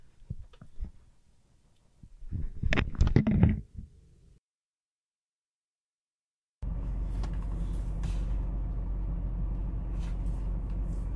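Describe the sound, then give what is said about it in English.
An old car's engine idles with a steady low rumble and airy hiss that holds unchanged for several seconds, following a few earlier clunks and a short stretch of silence; the car is left running with the heater blasting in cold weather. “I could just leave the car running, leave the heat blasting, and boom, I hop right back in, and I don't got to worry about anybody fucking taking my car.”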